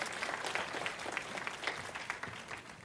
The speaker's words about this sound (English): Somebody clap your hands and say amen, would you?